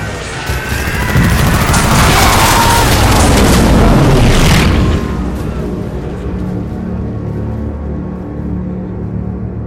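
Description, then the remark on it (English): Heavy .50 caliber machine gun fire from Hellcat fighter planes strafing men in the water rips out in a loud, dense burst of rapid shots for several seconds, then trails off into a low, lingering rumble. “Struck by whizzing 50 caliber bullets, they burst like watermelons, spraying red-pink chunks of brain and skull across the surface of the water as roaring Hellcats rip the air above.”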